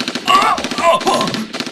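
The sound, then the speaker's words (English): A loud, rapid burst of M16 rifle gunfire shooting a person in the arm, sharp cracking shots running together in a fast, steady stream for under two seconds with no voices. “I have an M16 and there's nothing you can do about it.”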